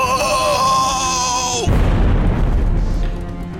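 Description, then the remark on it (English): A high, sustained whistling tone bends downward, then a loud explosion bursts in, followed by a heavy rumbling roar that slowly settles. The sound is dominant, with no voices. “In a film the critics are calling a movie, technically content, and an excuse to put lots of explosions and war propaganda on screen.”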